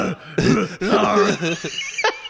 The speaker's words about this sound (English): I don't know why I just coughed at the beginning of a podcast.